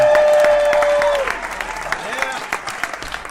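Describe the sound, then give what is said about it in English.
A crowd of people claps in a dense burst of applause for everyone who moved cactus and cedar stumps last year, gradually thinning out, with a sustained tone at the start and scattered claps lingering at the end. “Give applause to everyone that moved a cactus or a cedar stump last year.”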